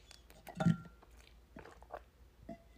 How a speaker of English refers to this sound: You guys hear me swallow? I hope not. But also, like, that would be cool.